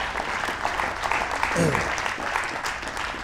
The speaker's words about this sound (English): Yeah, you can clap, that's all right.